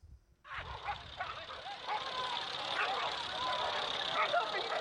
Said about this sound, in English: I bet this sounds gnarly. Bro. Why? It's just two dogs fighting.